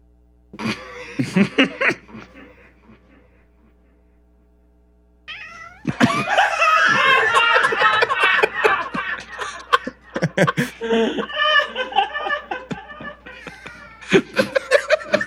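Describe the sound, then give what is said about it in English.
A cat meows repeatedly as it is moved around, its cries warped by a voice effect into dense, echoing, distorted bursts, with a short pause before a long cluster of rapid meows. “Put that effect on her meow. Yeah, turn the effect on and then just start moving her around a lot so she meows.”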